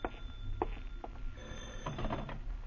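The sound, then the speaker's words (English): A telephone bell rings in quick, rattling bursts, loud, with no one speaking over it. “The phone startles you, but you manage to answer.”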